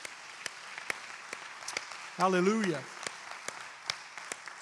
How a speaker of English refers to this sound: As you're being seated, would you clap for the Lord one more time?